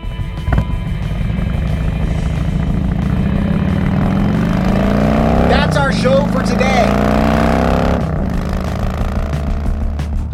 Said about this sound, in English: Special thanks to the Harley-Davidson Museum for lending us some engine noises.